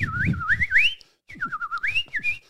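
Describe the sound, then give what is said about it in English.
A person whistles a lilting, birdsong-like melody in two warbling phrases separated by a brief pause, the pitch sliding and trilling up and down, fairly loud and unaccompanied. “Every bird in the bird kingdom, it's like a beautiful song.”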